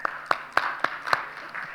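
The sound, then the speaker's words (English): A church audience claps for Wes, a young adult of the church, in a steady, even rhythm, five sharp beats standing out over a soft wash of scattered applause and crowd murmur, moderately loud throughout. “You can clap Wes if you want.”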